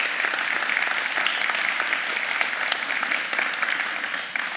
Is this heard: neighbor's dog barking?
no